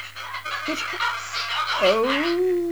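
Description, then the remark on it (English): A pet parrot squawks, harsh raspy chatter, then a drawn-out rising squawk that holds its pitch, over a steady low hum. “Dr. Wallace doesn't have a thrush, he has a parrot.”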